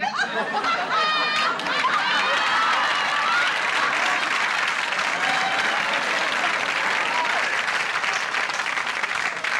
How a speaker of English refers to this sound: Which is the weirdest joke that got the biggest laugh from the studio audience. It got, like, an applause break. The word tinkling got an applause break.